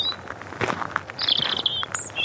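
High, thin chirps and short trilling phrases from a small bird up in a tree, repeating irregularly over a soft outdoor background with faint rustling.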